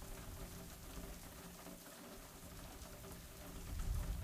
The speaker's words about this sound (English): The sound of the street begins to fade away, and it's only you, the rain, and the sound of the crackle overhead, the rumble.